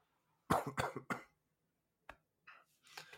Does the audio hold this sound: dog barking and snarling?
no